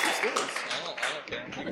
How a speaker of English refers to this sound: Give him a clap. Give him a big clap. There we go.